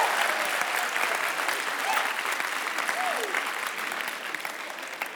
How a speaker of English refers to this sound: If you were born from 1986 onwards, would you please signal by applause right now? Yeah.